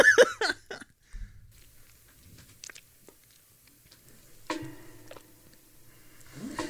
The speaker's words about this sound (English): What does your gulp sound like? What? What does your gulp sound like? Your gulp. My gulp? Yeah, yeah, yeah. Your gulp. You got anything to swig on? No, I'm all out. Oh, okay. Let me get some spit going.